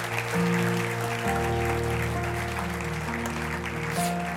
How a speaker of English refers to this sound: It's okay to clap your hands and give God the praise.